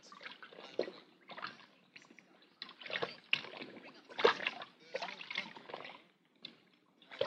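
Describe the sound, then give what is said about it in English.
A wrapped bundle is plunged into a bucket of water containing wetting agent and sloshed around, giving a run of uneven splashes and gurgles that rise and fall for several seconds, with no one speaking. “But we couldn't detect anything that would trigger the thing, so we'll put it in the water bucket here.”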